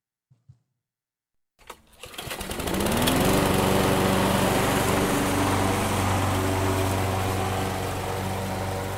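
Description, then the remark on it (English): A lawn mower engine starts after a couple of faint clicks, revs up quickly, then settles into a loud, steady droning roar that runs to the end. “Pardon me while I put my head under a lawnmower instead of listening to you”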